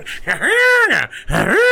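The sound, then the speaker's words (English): A voice imitates an old Model T car horn, belting out two loud, nasal honks that each swoop upward and then slide back down, like an "ah-oo-gah" call. “Did Model T's actually have a horn that sound like that?”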